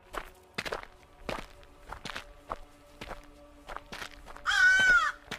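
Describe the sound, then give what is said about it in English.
Footsteps of people walking away from a graveyard back to a car at an uneven, unhurried pace, each step a crisp scuff over a low steady hum, and a single harsh caw from one of dozens of crows perched on dead trees cuts in near the end. “We started heading back to the car.”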